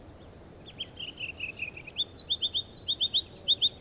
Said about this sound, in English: Ruby-crowned kinglets are tiny, but their song has so much energy. This is probably the smallest bird in the forest. I like to think that because they're so small, they have to kind of wind up their song a little bit before letting it all spill out.